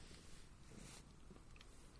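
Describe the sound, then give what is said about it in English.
A cat named Wit Out purring softly and steadily, a continuous low, rough rumble with no talking over it. “Accompanied by the sometimes loud purring. The dulcet purring of my true wit beast.”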